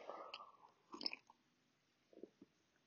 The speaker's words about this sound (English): But I think a wee drink at night time can help you just not necessarily sleep really good, but it's just a nice wee hot drink at night time. Let me just take another wee sip.